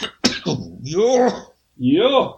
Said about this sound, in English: Cough that other lung out quickly.